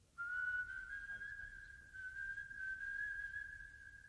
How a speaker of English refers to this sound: Somewhere behind the cake stall, a man was whistling, and Martins knew the tune.